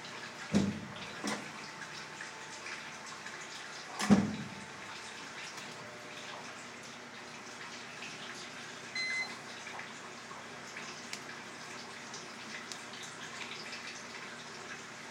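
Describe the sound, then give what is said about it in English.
Steady rushing water fills the space, like a tub or container filling from a tap, with a couple of sharp knocks early on and no voices. “I think it's filling up with water right now.”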